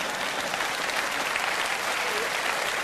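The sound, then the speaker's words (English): An audience applauds steadily, a dense, even wash of many hands clapping that holds at a fairly strong level throughout, with no one speaking over it. “I notice I'm not getting much applause on that.”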